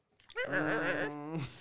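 A dog lets out one drawn-out, high, tonal whimper lasting just over a second, fairly clear, wavering in pitch before trailing off.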